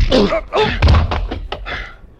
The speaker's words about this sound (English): I hit the car door with my shoulder.